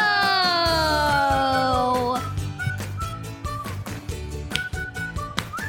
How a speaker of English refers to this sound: Ooh, clapping. I like it.